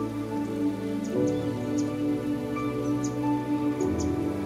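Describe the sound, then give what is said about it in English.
A steady wash of falling water, like gentle rain, with scattered soft droplet ticks, blended with a sustained, calm musical drone that shifts chords twice. “You begin to walk gently and gracefully toward the sound of this water.”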